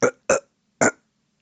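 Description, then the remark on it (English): Three short, harsh throat-clearing bursts: two quick ones back to back, then a third after a brief pause, each rough and gravelly with no speech around them. “Let me clear my throat.”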